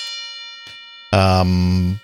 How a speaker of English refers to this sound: Here, where's my bell? Okay.